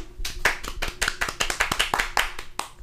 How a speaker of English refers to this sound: More applause.